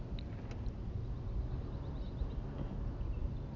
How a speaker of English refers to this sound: Some sort of chainsaw action going on in the yard over here.